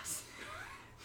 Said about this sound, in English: Yeah, but I'm out of breath. Do you not hear me breathing heavy? I get like that. That's nicotine.